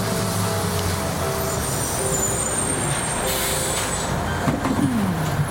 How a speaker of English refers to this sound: Here's my bus.